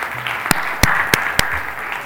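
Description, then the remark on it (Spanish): An audience applauds for having come out in the cold weather, a steady wash of many hands clapping with a few sharp, louder individual claps standing out at irregular moments; no one speaks. “Un aplauso por venir en este frío.”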